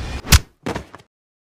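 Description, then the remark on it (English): A heavy, blunt, loud whack of a gun striking the top of a man's head, followed a moment later by a softer, rougher scuffling thud, with no talking. “One of them rushes up to William and hits him on the top of the head with”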